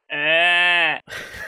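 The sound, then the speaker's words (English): A person imitates a sheep with one loud, sustained bleat lasting about a second, followed by a short breathy, noisy burst that may be laughter. “What does a sheep say?”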